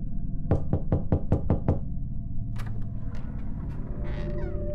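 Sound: knocking on a door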